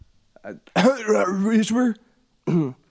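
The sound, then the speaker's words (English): A voiced cough, drawn out and throaty like a throat clearing, with a short grunt before it and a second brief burst after a pause. “That's how I cough.”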